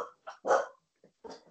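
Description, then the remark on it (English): Several sharp barks from dogs that have spotted a deer outside a house, in a quick, uneven burst, loud, with short gaps between them and no talking. “There's a deer outside of my house and my dogs have spotted it.”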